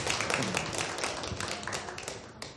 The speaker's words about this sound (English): And now, if we join together in a minute, have a round of applause for our children.